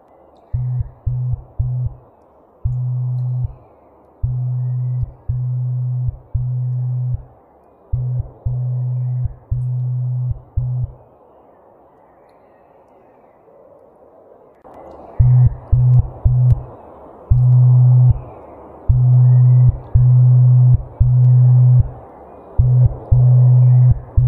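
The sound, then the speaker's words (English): A low, steady 33-hertz tone switches on and off in a Morse-like pattern of short and long pulses, pausing briefly midway before resuming louder over a faint background hiss. “Kind of sounds like Morse code.”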